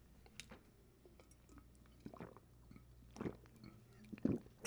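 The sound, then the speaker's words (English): A few quiet sips from a drink, with soft wet slurping and swallowing sounds coming in short bursts spaced a second or so apart, and no talking. “Pardon me as I take a sip of my drink.”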